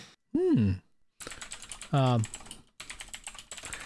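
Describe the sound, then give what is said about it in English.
Rapid clicking of fingers typing on a computer keyboard runs through most of the stretch, with two short voiced hums or murmurs breaking in. “As you can hear, I'm typing.”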